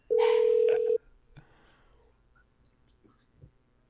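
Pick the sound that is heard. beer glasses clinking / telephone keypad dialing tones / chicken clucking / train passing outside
telephone keypad dialing tones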